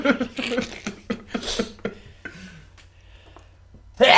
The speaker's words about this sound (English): Bless you. Thank you.